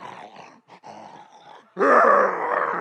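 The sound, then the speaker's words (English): A voice imitates a roommate's loud snoring: a few rough, rasping breaths build into a harsh, roaring snore that swells suddenly and holds for about a second, gravelly like a growling animal. “it was Jeremy snoring”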